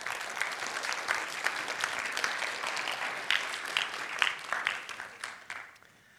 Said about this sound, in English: So give these guys a round of applause now as they come up.